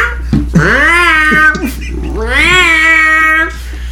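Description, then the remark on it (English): A human voice mimics neighbourhood cats in heat outside, letting out two long, rising and falling yowls, loud, one after the other with a brief break between them. “And the cats, like, outside, like, you know, just...”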